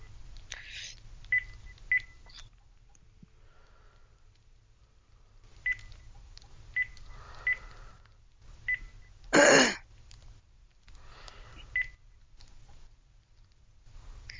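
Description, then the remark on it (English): A series of short electronic keypad beeps from an old telephone being dialed to make a call, spaced irregularly over several seconds, with one longer burst of noise partway through and faint background hum. “This phone's kind of old, so the buttons are...”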